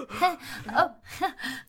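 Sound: voice imitating gasping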